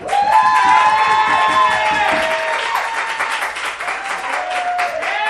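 A loud burst of audience applause mixed with cheering and high whoops as the audience cheers to vote for the winner of a debate, steady dense clapping throughout with shrill voices rising and falling over it, tapering slightly toward the end.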